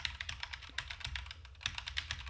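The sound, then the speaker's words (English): Rapid clacking keystrokes from a new mechanical keyboard in a fast uneven rhythm with sharp clicky transients and no talking. “Oh, I got a new mechanical keyboard.”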